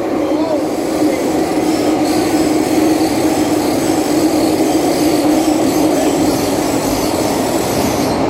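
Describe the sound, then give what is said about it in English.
The carriages of a four-carriage interior train roll steadily along the rails with a loud, continuous rumble, a faint metallic wheel squeal threading through the noise for the whole stretch. “All the interior trains, right, in these four carriages, I take ready.”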